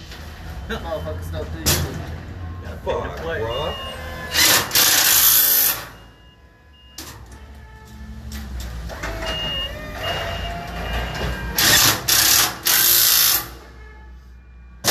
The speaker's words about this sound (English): Oh, shit, bro. You don't hear all the fucking... the impact and the tools being slammed around? They know what's up.